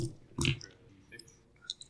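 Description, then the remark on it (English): Dice rattle and clatter onto a table in one short burst, followed by a few faint, scattered clicks as they settle; four six-sided dice rolled to generate a second array of character stats. No one speaks, and the sound stays fairly quiet. “Just roll a second array, yeah.”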